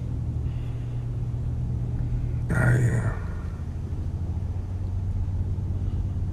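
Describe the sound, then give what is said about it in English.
A steady, low droning rumble from inside a moving car fills the whole stretch, with one brief, brighter burst of noise partway through before the even hum resumes. “There's this particular scene, I believe it's in episode 2, where old man Mahershala and his son are driving in a car.”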